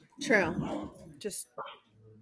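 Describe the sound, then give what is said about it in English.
Dogs erupt in a quick burst of yelping barks and whines, followed by a few scuffling thumps and short snarly noises before it settles down. “There's a dog war happening.”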